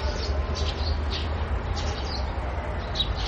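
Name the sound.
birds chirping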